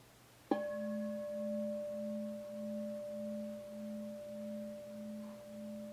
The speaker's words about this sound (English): So we'll just have a few more seconds of quiet here together. And I'll ring the bell in just a moment.